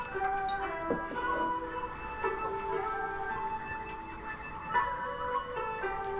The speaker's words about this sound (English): There's a fucking racist gong noise.